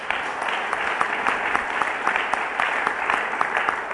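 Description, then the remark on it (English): A church audience applauds after a prayer, clapping for those God has used, many hands clapping at once in a dense, even wash of sharp claps that holds at a consistent loudness throughout, with no voices standing out. “Let's clap for those that God has used.”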